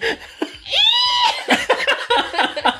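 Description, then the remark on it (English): A person imitates an elk's bugle with a single rising, strained, whistly vocal call lasting about half a second, then breaks into choppy, breathy laughter. “You want to hear my elk impression?”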